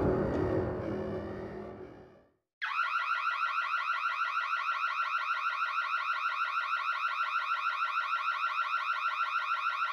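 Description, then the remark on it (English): A low rumbling noise fades to silence, then a loud electronic alarm abruptly starts, blaring a rapid, steady pulsing tone that continues without a break. “The alarm went off and she jumped with a start.”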